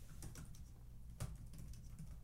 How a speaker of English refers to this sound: Typing it out.